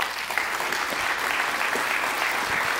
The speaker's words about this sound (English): Thank you. Thanks very much. Thank you for that nearly rousing round of applause. I really appreciate it.